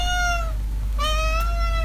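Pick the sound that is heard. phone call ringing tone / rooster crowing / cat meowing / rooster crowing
cat meowing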